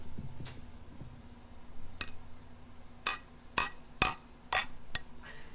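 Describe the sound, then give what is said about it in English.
Glasses clinking together in a toast: six or seven sharp, bright clinks, sparse at first and then coming faster, over a low steady background hum with no talking. “One thing about me is that when I get a couple drinks in me, I will cheers. Let's get that sound effect on the mic.”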